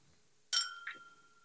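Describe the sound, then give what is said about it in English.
A bright glass clink rings out with a sustained, high-pitched tone that slowly fades, followed moments later by a softer second clink, in a socially distanced toast. No one speaks. “Social distance cheers.”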